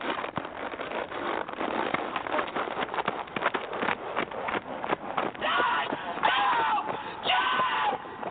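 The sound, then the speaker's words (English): Steady clip-clop of horse hooves as a man wearing a microphone jogs the horse in hand, a quick repeating rhythm of impacts, with indistinct vocal sounds rising over it toward the end. “mic'd up as he jogs the horse”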